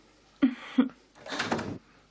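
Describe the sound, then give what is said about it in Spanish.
A door being closed: two quick wooden clunks followed by a brief rushing, scraping sweep as it swings shut, with no talking. “Primero, haz el favor de cerrar la puerta.”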